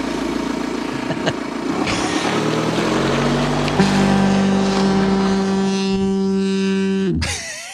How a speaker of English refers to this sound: We added a foghorn to the Apple Corner.